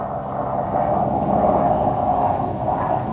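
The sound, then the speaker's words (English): A jet engine roars overhead in a steady, broad wash of noise that swells slightly at its peak and then holds, with no voices, heard at a home under the flight path of an airport. “Sounds jet engine-y over by you right now.”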